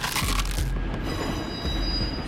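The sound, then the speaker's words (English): A large trolley brakes hard after striking a bicycle, its wheels grinding and squealing on the rails in a steady high whine over a deep rumbling roar as it labors to a stop, with no voices. “The driver slammed on the brakes, but the large trolley had difficulty stopping. As it ground to a halt”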